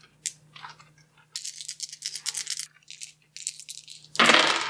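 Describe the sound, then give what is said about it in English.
Hard plastic eight-sided dice (D8s) clatter as a handful is grabbed and jostled, then rattled in a burst of clicks, ending in a loud, busy tumble as they're rolled onto a surface for a damage roll. “Let me just grab some D8s.”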